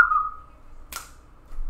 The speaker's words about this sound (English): Whistle. You can't whistle. I can whistle if I try a few times.